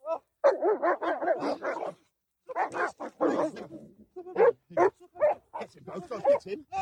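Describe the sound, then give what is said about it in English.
Cane Corso dogs barking loudly and aggressively while attacking a man in a park, a rapid volley of harsh barks, a brief pause, then more frantic overlapping barks and growly yelps. “That might be a Connie Corso dog. Those are Connie Corsos.”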